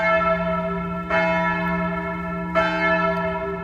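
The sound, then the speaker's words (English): Deep church bells, being raised by volunteers pulling ropes for change ringing, ring out with sustained, overlapping tones, fresh strikes landing about every second and a half over a lingering hum, loud and resonant with no voices. “I'm going to raise the bells.”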